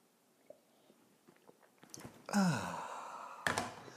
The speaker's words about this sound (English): And join me now for the unparalleled pleasure, the dopamine hit of the day, the thing that makes everything better. It's called the simultaneous sip, and it happens right now. Go.